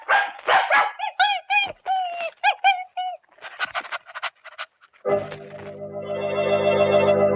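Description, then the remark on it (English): A dog named Butch barks and yaps in quick, high-pitched bursts, fairly loud, followed by a steady droning tone that swells toward the end. No one speaks. “So, Jerry's not going to get a byline on that story about the shipwreckers, but Butch the dog may.”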